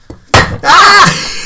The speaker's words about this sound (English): Sorry, everybody, we just spilled water.